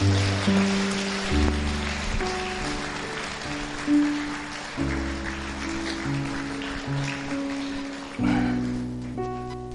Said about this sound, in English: And clap your hands all over the building.